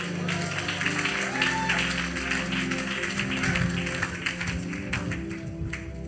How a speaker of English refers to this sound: So to the choir, say choir. You are a very wonderful choir. Clap for them.